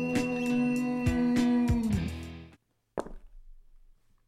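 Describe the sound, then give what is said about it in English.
A short musical sting with sustained tones and a few hits cuts to silence, then a sharp clatter of dice tumbling across a surface and settling, moderately loud. “Let's get ready to dice roll!”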